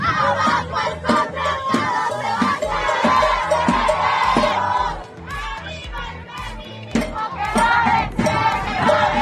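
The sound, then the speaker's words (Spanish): A large group of policewomen, the Ateneas, wearing helmets and shields, chants loudly in unison as they join a march in Mexico City demanding justice for femicide victims, their rhythmic shouted phrases rising and falling over a steady low pulse and surrounding crowd noise. “Las Ateneas, mujeres policías con cascos y escudos, se unieron a la marcha gritando esto.”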